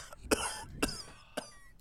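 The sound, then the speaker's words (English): A voice acts out a skull giving three harsh, raspy coughs at regular intervals, each trailing into a growling, snarl-like rasp, fairly loud with no speech. “You hear the skull cough and snarl again.”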